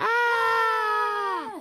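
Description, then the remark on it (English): A loud, sustained scream held at a steady high pitch for about a second and a half, then bending downward and cutting off, as if several voices shout together in one long cry. “Let's all scream as loud as you can!”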